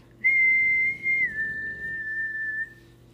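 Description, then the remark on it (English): A girl whistles a long, wavering eerie tune alone, one sustained note sliding slowly downward for about two and a half seconds, clear, with a low hum underneath. “And then she began to whistle an eerie tune.”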